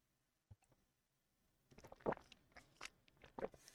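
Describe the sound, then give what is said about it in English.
Someone takes a quiet sip of water: a single soft click, then a short run of wet slurping and swallowing sounds, with no talking. “Sorry, sip of water.”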